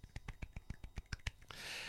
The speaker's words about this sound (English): I'm just whacking my leg here. Nothing else. I was going to say, it's nothing weird. Look at the screen. Look at how that looks. I'm just slapping my leg, see?